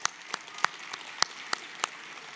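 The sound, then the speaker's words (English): A church audience claps together for families who have just made commitments to raise their children in the faith, a steady patter of many hands with sharper individual claps popping out every fraction of a second, moderately loud, with no voices over it. “Just join me in an applause for those families.”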